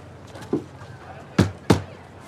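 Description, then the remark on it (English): Two sharp, loud knocks on a door in quick succession, preceded by a faint softer tap, with no one speaking. “You in there? Yeah, just knock.”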